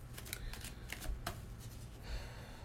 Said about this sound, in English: So with that said, we're gonna do a reading for the sacral chakra. So let me get these cards nice and shuffled.